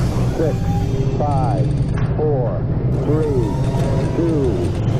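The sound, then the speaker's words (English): A rocket engine ignites during an ignition sequence leading to liftoff. It makes a loud, steady, deep roar that rumbles without letup for the whole stretch, while a voice speaks over the noise. “Ignition sequence start.”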